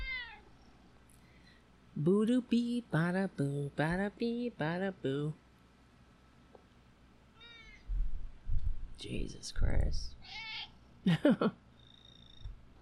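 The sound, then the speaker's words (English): A pet cat named Junior meows insistently in a quick series of loud cries, each stretched and wavering, followed by a man speaking briefly afterward. “I lost it because of my beautiful cat.”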